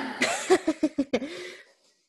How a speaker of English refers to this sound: I'm yawning.